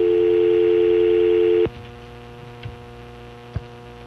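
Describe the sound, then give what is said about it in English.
A loud, steady telephone dial tone drones for about a second and a half in the coach cabin of a plane, then cuts off abruptly, leaving a faint background hum with a couple of soft clicks. “We are having a report of a dial tone somewhere in coach.”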